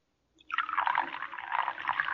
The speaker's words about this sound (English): Now unscrew the top. That's it. Now pour it into the cocoa.